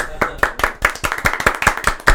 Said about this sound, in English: Thunderous round of applause.